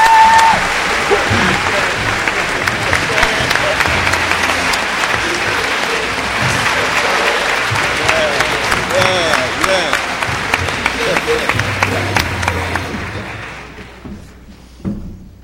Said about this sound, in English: She is the Congresswoman from California. Please give a round of applause to Maxine Waters.